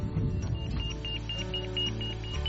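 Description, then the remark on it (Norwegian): An avalanche transceiver, used to find people buried in an avalanche, beeps in a quick, steady series of short high-pitched electronic tones, repeating evenly over a low rumbling background with no one speaking; its beeping weakens as the person carrying it moves farther away. “Så hører du at han piper mindre jo lenger unna jeg kommer der.”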